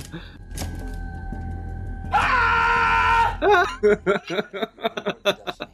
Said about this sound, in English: did the actual screaming.